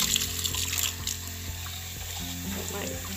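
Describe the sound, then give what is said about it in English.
Cold water runs steadily from a tap into a sink, a continuous hiss with a few faint clinks and knocks as a cup is washed under the stream. “Like, wash that cup with cold water and the hot water is being hot.”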